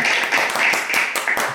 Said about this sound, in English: Golf clap, everyone.